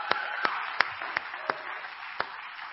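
An audience applauds the preachers: a steady, dense wash of clapping with a handful of sharper individual claps standing out at irregular intervals. No one speaks.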